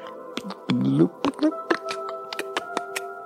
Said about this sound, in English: Okay, now I'm going to pour it into a cup.